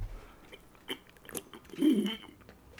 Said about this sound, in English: Now, have you taken a sip yet? Go ahead and take a sip.